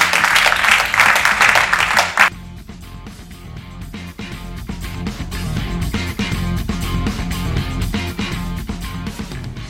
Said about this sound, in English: All right, round of applause.